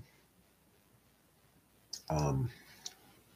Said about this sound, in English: I'm typing. I want to get the date correctly.